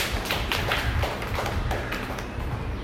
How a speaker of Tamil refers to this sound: ஏதோ ஒரு கை தட்டுங்கள்.